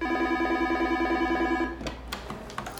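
A telephone at a wildlife rescue center in Tucson rings with a fast, trilling electronic warble for about a second and a half, then stops abruptly as the handset is picked up with a brief clatter.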